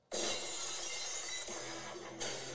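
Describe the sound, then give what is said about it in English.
Glass shatters with a sudden loud crash, followed by a long bright spray of tinkling shards; a second burst of breaking glass flares near the end. “In the beginning, it's just glass shatter.”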